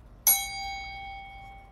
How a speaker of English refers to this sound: Gonna bang. Or I'm gonna ding the bell.